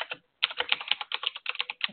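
Rapid, irregular clicking of keys on a computer keyboard, a steady burst of typing after a brief pause, moderately loud with no voices.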